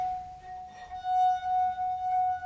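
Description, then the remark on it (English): A wine glass with water, being played, rings in one steady, pure, mid-high tone, sustained throughout with faint overtones above it and slight swells in loudness, and no voices. “And when you're very close up, you can actually see some of the vibrations on the water too.”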